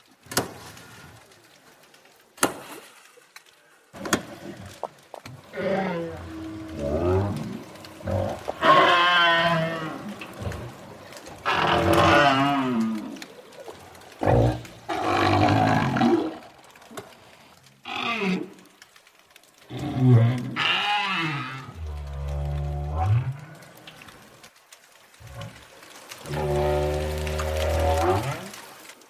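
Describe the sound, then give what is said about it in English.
Southern right whales call underwater at the Auckland Islands, New Zealand: a few sharp, gunshot-like cracks early on, made only by males, then a long series of loud moaning, upswept and warbling tonal calls with rich harmonics from both males and females, and no one talking. “I can share with you some amazing recordings of southern right whales”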